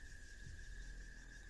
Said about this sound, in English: You all... stand outside of the workshop, listening into the cicadas and the weird frog noises that are surrounding you.